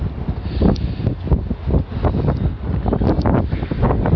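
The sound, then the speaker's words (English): Loud, continuous strong wind buffeting a microphone, with low rumbling gusts and rough bursts that swell and fade throughout, no voices heard. “very windy right now.”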